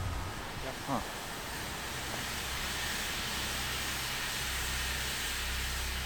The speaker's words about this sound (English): Look at that that's grate over there. That's steam coming out of the grate, hey? Yeah. So I guess this whole thing is like district steam heating or something, or? That's probably what that is, yep.